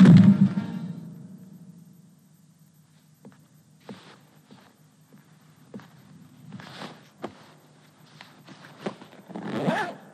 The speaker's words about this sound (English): We also then get an incredible zip sound effect where she undoes a zip, but the echo of that zip is incredible.